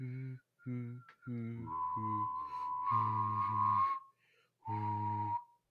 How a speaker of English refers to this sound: Do you know I can whistle and hum at the same time?